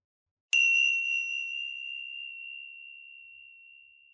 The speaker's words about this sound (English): We'll make a start using some chimes to begin.